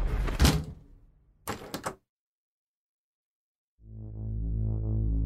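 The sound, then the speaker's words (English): A door swings shut with a solid thud, followed by a brief metallic rattle of a lock being turned. After a pause of silence, a low sustained humming tone fades in. “After a second, I shrugged and closed the door, locking it tight.”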